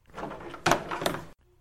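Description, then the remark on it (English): A door is opened for someone who had been tapping outside it, with a short stretch of scraping movement broken by two solid clunks, then everything goes quiet. “Well, don't stand outside my door tapping like a blasted raven. Come in.”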